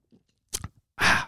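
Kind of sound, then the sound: human body sound, sipping beer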